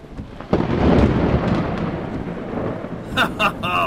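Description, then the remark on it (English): A loud, deep rumble of thunder breaks out and rolls on over steady, heavy rain at night, with a brief voice heard near the end. “I hate driving at night when it's raining.”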